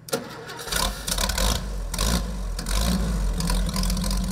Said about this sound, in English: This is a Montgomery Ward. Montgomery Ward sold the tractors. They were built by a company called the Custom Corporation. They were built in Shelbyville, Indiana. And they started out in the mid-40s, I think, and run to 53.